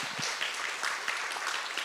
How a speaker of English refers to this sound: Yeah, praise God. You give the Lord a hand clap for that.